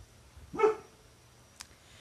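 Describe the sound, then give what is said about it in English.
A single sharp dog bark rings out from a dog on a patio, followed by a brief faint click in an otherwise quiet background. “But dog's going crazy on the patio”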